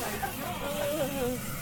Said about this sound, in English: Was he spraying something on us?